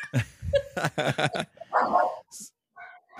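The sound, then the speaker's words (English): A puppy yaps and yips in quick, irregular bursts, high-pitched little barks with a brief whine-like squeak among them. “Is that Oswald or is that I that can't was remember Murphy your other puppies?”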